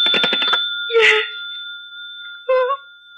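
household object, telephone bell ringing

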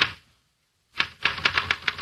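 household object, typewriter keys typing

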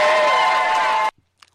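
crowd, audience clapping and cheering

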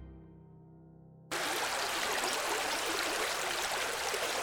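nature, flowing creek water

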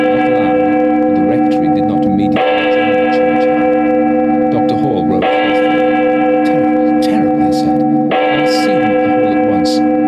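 sound effect, church bell tolling

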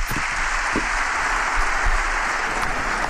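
crowd, applause

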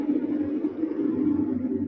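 vehicle, truck passing by outside

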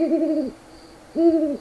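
bird, great horned owl hooting

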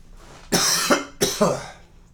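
human body sound, coughing

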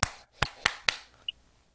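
human body sound, one person clapping

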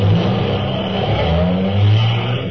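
vehicle, car engine revving

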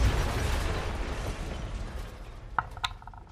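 sound effect, explosion

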